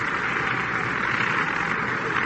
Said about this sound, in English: And here comes Johnny Antonelli up now, and he'll probably get a round of applause also.